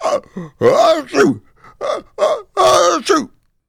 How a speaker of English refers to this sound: As Fred continued to sob and sneeze, an ice fish, whose name was Milo, had felt Fred's tears in the water and heard his crying.